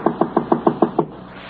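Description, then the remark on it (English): A man knocks again on the front door of a home in a quiet suburban district of a large Midwestern city: six quick, evenly spaced, fairly loud knocks on a wooden door, followed by a brief quiet. “After a wait, he knocks again.”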